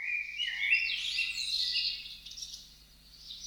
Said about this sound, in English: I think we should hear some birds. Let's hear it, Shira. Can we hear some birds?